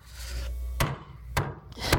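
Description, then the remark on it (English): A wooden board being handed over while Noah builds his boat, with three sharp wooden knocks spaced about half a second apart over a low, steady rumble. No one speaks. “Hand me that board.”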